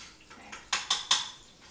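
Metal utensil scraping and clinking against a pan in a few quick, sharp strokes, mixing ingredients together with melting butter, with softer stirring sounds between them and no voices.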